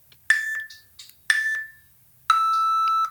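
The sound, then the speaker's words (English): Three loud electronic countdown beeps before a video recording starts, evenly spaced about a second apart: two ringing tones that fade, then a final longer, lower, steady tone. No one talks. “And the beeps sound like.”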